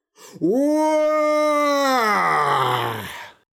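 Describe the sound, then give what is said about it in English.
A single great, loud cry, sounding like the earth tearing itself in two, swells up and holds a steady, strained pitch for about three seconds, then sinks into a rough, gravelly groan before cutting off. No other sounds. “Then there was a great cry, which sounded like the earth was tearing itself in two.”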